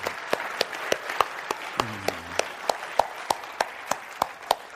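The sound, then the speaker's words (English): An audience applauds the Lord steadily during a church service, a dense wash of many hands with sharper claps ringing out in a fairly regular rhythm; a brief voice calls out partway through. “Yeah, let's applaud the Lord.”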